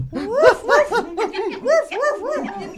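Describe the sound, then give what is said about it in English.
A homeless dog lets out a quick, continuous run of yelping barks and whimpers, fairly loud, the pitch rising and falling with each cry for about three seconds. “Even though you don't vote, as you are a homeless dog.”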